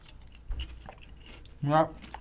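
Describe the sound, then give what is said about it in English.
Soft chewing of Lay's chicken-flavored potato chips, more muffled than crunchy, with a low thump early on and a brief voiced murmur near the end. “You know, if these were crunchy, if these were actual like kettle chips, they'd be good, huh?”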